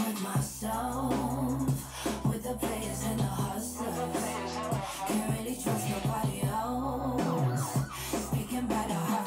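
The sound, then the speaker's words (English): A song with deep, steady bass and layered instrumentation, with emergency-vehicle siren wails woven into the mix and running continuously throughout. “Hey, those sirens weren't part of this song, right? They were.”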